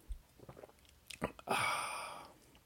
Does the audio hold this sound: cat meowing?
no